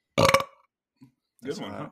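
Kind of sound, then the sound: human body sound, burp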